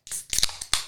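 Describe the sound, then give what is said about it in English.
Zero-alcohol Better Beers being opened: a series of sharp clicks and pops, each followed by a short burst of bright, hissing fizz. Fairly loud, with no talking. “Speaking of, it's time to open our beers.”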